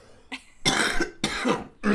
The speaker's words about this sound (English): Hold on, I have to cough.